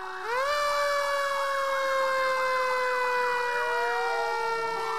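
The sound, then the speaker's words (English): A loud fire truck siren winds up and wails steadily, with a second siren rising underneath toward the end; no voices are heard. Six fire trucks are arriving at a Sunday school. “And six fire trucks rock up to the Sunday school.”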